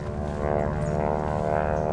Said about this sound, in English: Overhead, a lone P-61 Black Widow fighter plane, piloted by Lieutenant Kenneth Schreiber, suddenly appeared. The plane, nicknamed Hard to Get, was there to provide a distraction to the Japanese guards.